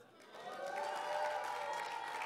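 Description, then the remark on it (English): A church audience claps and shouts praise together during a sermon, a steady wash of hands and raised voices that swells slightly and holds at a moderate level. “So I want you to help me preach this morning, not just with clapping and shouting back, but what I want you to do is ask the Holy Spirit.”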